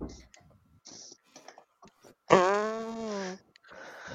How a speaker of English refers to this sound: I'm going to have to disinfect that mic from your farts now. That is disgusting.